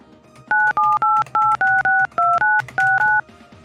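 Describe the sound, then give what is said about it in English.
A telephone number being dialed: ten quick touch-tone beeps, each a steady pair of pitched tones, pressed in a brisk, slightly uneven rhythm with a faint background hum between them. “I gotta call her.”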